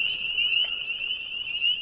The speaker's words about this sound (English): Then we have the spring peeps. Or spring peepers.